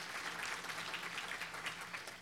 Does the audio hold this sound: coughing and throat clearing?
no